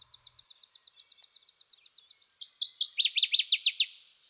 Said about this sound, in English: Another bird which has interested me here is the Louisiana water thrush, called also large-billed water thrush and water wagtail.